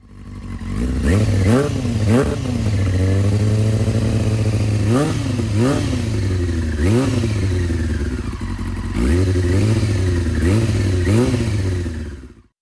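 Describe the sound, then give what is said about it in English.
A motorcycle engine with the DB killer baffle still fitted in its exhaust idles with a deep, muffled exhaust tone, blipped into several quick revs that rise and fall, with a steady low rumble between them and no talking. “So much more engine noise now, very subdued, but a nice deep tone though.”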